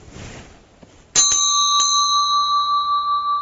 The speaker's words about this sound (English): Would most of you say it comes from the bell? Yes? Okay. Would you say it's coming from the ceiling? It's emanating from the ceiling? No? You might. Especially with echo. From the windows? A little bit from the windows, yeah.